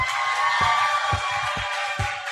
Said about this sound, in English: I want you to keep that applause going. Let's welcome best-selling author Dr. Cindy Trim.